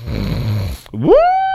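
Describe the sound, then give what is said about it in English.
A person imitates a man's loud snoring in his sleep: a rough, rattling low inhale, then a brief gap and a rising whistling wheeze that holds steady. Loud, no talking. “Every single time he was snoring, I was like, what the fuck, dude?”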